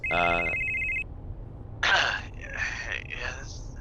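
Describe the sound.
An outgoing phone call: one steady electronic ringback tone sounds for about a second, then stops; after a short pause a voice picks up and begins talking.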